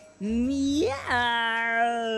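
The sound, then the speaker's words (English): A person imitates a cat meowing: one long, drawn-out vocal meow that bends upward in pitch partway through, fairly loud with nothing else around it. “promise me you'll never try to meow ever again.”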